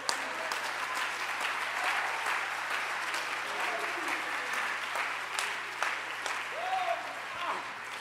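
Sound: audience applauding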